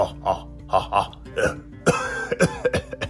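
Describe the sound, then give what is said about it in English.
A voice fakes a run of short, throaty coughs, about a dozen quick bursts, moderately loud, growing harsher and more forceful toward the end. “Oh, the volcano smoke is making me cough a lot.”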